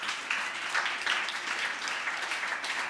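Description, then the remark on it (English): A crowd applauds steadily as three people come up to the front to speak, a dense wash of many hands clapping at once, fairly loud and even throughout with no voices standing out. “Give them a round of applause as they come up here.”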